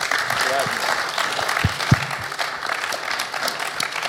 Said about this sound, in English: Yeah, that's so, I reckon that's worth a clap, isn't that awesome?